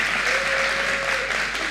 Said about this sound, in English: Let me give a hand clap for this young man.